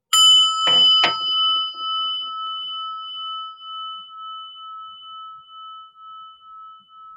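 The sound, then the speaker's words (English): A meditation bell is struck, with a quick second strike, then a clear, pure ringing tone that hangs in the air and slowly fades over several seconds, with no voices. “And listen to the bell.”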